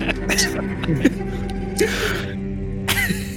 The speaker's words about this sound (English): What is up with all these sneezes? Do you guys know how to mute your mics?